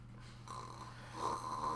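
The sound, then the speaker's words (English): A faint, brief snore: a low droning rasp that swells slightly louder toward the end, heard alone with no talking. “You know, if that happened today, someone would do a meme with just snoring.”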